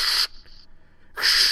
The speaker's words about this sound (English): sounds like white noise, but it almost sounds like a torch is being turned on. Yep. Steam releasing.